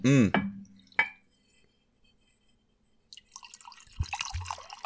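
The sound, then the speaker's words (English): Pendleton whiskey glugs from a bottle into a glass in a few quick, musical gurgles, followed by a sharp clink and then a splashing trickle of liquid filling the glass. “Hear how musically it pours.”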